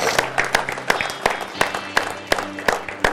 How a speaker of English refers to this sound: Let's give the Lord a big hand clap, church. Come on.